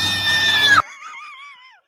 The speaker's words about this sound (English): Would you like to hear her squeal? I would love to hear her.